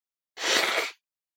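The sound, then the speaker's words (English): A single forceful nose blow: a harsh, breathy, hissing burst lasting just over half a second, heard alone with no talking around it. “I'm about to blow my nose.”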